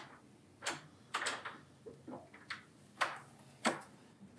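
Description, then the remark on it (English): A bathroom door being opened and closed by a person: a quiet series of sharp clicks, knocks and latch rattles, spaced irregularly over a few seconds, with no voices. “That's the bathroom door opening and closing.”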